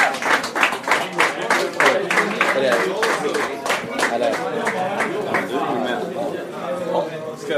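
An audience breaks into loud applause, many hands clapping in a dense, steady patter that holds for several seconds, with crowd chatter mixed in underneath.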